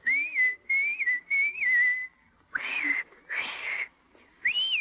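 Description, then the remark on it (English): A person whistles a short, wavering tune for about two seconds, then makes two breathy, hissing blows, before a clear whistle starts again near the end. “And anytime you need me, you know, just whistle like this.”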